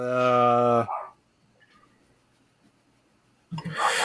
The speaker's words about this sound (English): Shut that dog up.